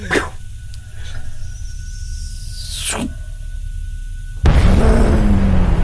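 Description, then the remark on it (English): A gasoline explosion making a massive plume and fireball with no concussion wave: a low, steady rumble with a few whistling sweeps, then a sudden loud whooshing blast that swells into a heavy, sustained roar. No one speaks. “A gasoline explosion, you know, that really mucky, that's cool, that huge plume.”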